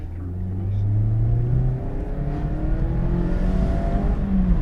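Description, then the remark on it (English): A Mazda MX-5 sports car with a sports exhaust revs hard under full throttle, its engine note climbing steadily through the gears, loud with a deep rumbling drone and no talking. “The sports exhaust on this car probably doesn't make that much of a difference when you're on full throttle, but there's just a little edgy rasp to it once you let the car just tick over, and also a little bit on downshift as well.”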